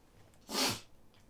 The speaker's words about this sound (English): Oh my goodness. Hold on, sniffle coming in.